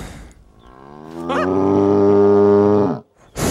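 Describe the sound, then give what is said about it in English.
A bull chasing people lets out one loud, drawn-out bellow, low and throaty, swelling and holding for about two seconds before cutting off, followed by a brief burst of noise. “Unfortunately then, they're chased by a bull, into some barrels”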